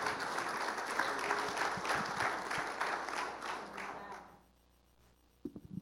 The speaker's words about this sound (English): Denle un aplauso al Señor. Give an applause to the Lord.